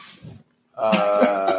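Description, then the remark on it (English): A dog lets out a drawn-out, wavering whine or howl from another room while people are recording, lasting about a second after a brief rustly breath and a moment of quiet. “In case you're hearing, we're not torturing a dog. He's just in the other room right now while we're recording.”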